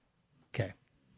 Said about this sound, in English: It's your dog snoring. This isn't new.